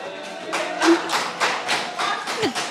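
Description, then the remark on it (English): An audience claps slowly and evenly, roughly three sharp claps a second for a few seconds, each burst equally loud, with a faint tonal hum underneath and no one speaking. “That the big clapping just sounded mad.”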